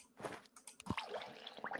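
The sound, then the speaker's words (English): A brief, wet burst of water being poured onto a bonsai plant, with squishy splashes and a few drips over about two seconds, fairly quiet. “Bonsai. Water.”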